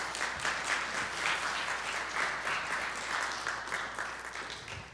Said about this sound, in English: Let's give them a round of applause for coming up here.